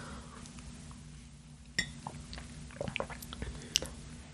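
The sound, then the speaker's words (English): A mug clinks once, followed by soft wet mouth sounds of sipping and swallowing coffee with coconut oil in it (bulletproof or keto coffee), quiet and intimate, with a low steady hum beneath and no talking. “Let's go ahead and give it a little sip because I don't want it to get cold.”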